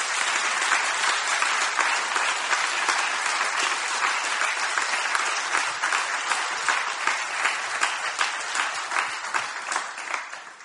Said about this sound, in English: If you really believe that, would you clap your hands?